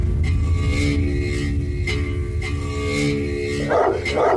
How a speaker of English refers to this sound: Get off! Your dog was gonna rip my dog's throat out.